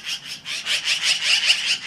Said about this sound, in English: All of it accompanied by the magpie's call, which is not exactly the bird world's sweetest.